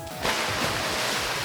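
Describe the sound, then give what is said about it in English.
A sudden rush of water surges in after a brief quiet moment and keeps washing steadily, like splashing waves churning, with no voices. “Well, you'll never find me in all this water!”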